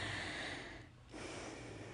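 Soft, breathy snoring rasps along steadily, breaks off for a brief pause near the middle, then starts up again. It's fairly quiet and nearby, with no talking.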